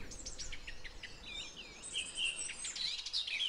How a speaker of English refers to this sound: They perch at the top of tall trees and will often sing in very windy conditions, which has earned them the alternative common name stormcock.